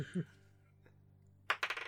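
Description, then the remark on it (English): Dice are rolled for a religion check and clatter and rattle across a hard surface in a quick burst of sharp clicks near the end. The burst is loud and comes after a quiet stretch with a faint earlier knock. The roll shows a 9. “I have to open my dice. Hold on.”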